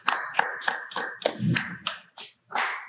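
A small group claps in a steady, fairly quick rhythm, about nine sharp claps over a few seconds, moderately loud and with no voices.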